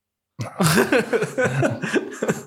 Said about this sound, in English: Oh, wow. That made me cough. See? It doesn't take much, does it? To make you cough.